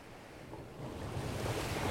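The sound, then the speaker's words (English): Ocean waves surge and crash against a cliff, a broad rushing roar that swells louder toward the end, with a steady windy hiss and no voices. “Waves crashed against the cliff.”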